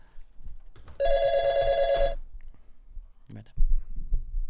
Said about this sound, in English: Right, I can hear the phone ringing.